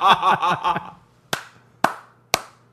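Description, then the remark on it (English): A short burst of voiced laughter is followed by three sharp, evenly spaced hand claps, each crisp, with brief silence between them. “I give you a clap for Mobius Strip.”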